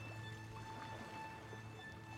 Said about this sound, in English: Everyone was quiet for a bit. The water lapping against the hull of the rowboat, the only sound.